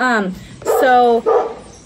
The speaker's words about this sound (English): I'm sorry, this dog is barking over here. Just pretend like he's not.